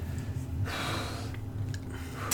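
Heavy, hissing breaths forced through gritted teeth while holding a hurt knee: a long strained exhale followed by a couple of shorter, sharper breaths, with no talking.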